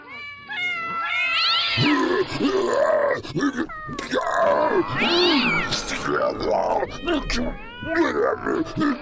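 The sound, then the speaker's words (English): A chorus of many alley and domestic cats, led by a cat called Mr. Fluff Nugget, yowling and caterwauling together, long wavering cries overlapping and rising and falling in pitch, loud, continuing without pause. “Have you ever seen so many cats? Alley cats, domestic cats.”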